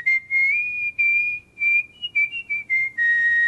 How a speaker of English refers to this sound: So he's the pro whistler. You know, how high and low can you go?